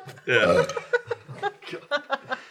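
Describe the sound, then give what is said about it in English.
A loud, wet-sounding burp erupts, followed by a run of short, breathy chuckles and giggles. “That was wet. The wet burp. It was so wet.”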